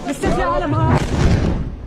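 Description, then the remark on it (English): A bomb explosion in Eastern Ghouta, Syria, bursts in after a brief moment, a loud low rumbling blast that carries on to the end while aid workers, who have just put a wounded civilian into a van, shout and talk over it. “another bomb.”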